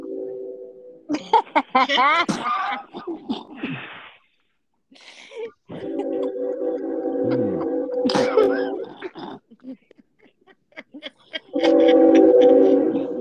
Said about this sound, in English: So sick of this noise. Yeah. Motherfucker, are you on the train?